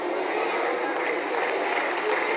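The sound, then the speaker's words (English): An audience claps steadily and densely throughout, a loud, even wash of many hands with no pauses and no speech over it. “So wait a minute, stop clapping.”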